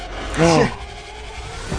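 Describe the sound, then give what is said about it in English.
A short burst of car engine noise from a film trailer, as the car moves backwards, swells and fades within a fraction of a second, with a warbling, oddly reversed-sounding tone, over a faint hiss. “Okay, did you see what just happened to the car, though? Yeah, it went backwards.”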